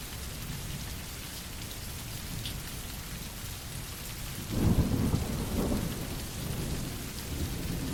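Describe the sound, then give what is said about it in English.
Heavy rain hisses steadily throughout as someone walks back to their car through the downpour, getting drenched; about halfway through a deep roll of thunder swells up, rumbles for a couple of seconds, then fades back into the downpour. No one speaks. “Now I'm fully drenched and I've arrived back at my car.”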